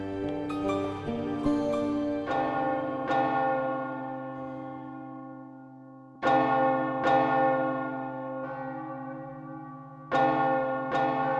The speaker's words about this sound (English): Church bells were rung for every death. The bells were hoarse with tolling.